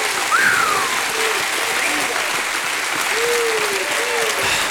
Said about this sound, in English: Give God 30 seconds, a hand clap and a shout of praise.